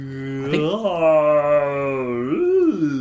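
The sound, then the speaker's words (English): A human voice imitates a humpback whale call, a long sustained moaning tone that rises, holds steady, then swoops upward and falls again, with a rich harmonic buzz throughout. “I think that was a humpback.”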